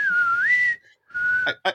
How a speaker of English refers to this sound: Since we're here, who actually did the whistle at the end of the video?